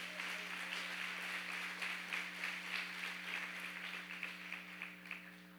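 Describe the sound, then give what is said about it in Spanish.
An audience applauds the Lord steadily for several seconds, a dense, crackling wash of many hands clapping at an even level, with a low electrical hum running beneath it. “¿Cuánto le dan un fuerte aplauso al Señor?”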